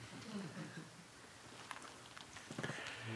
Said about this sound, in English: What a beautiful thing this rain is, huh? Do you like the rhythm it makes?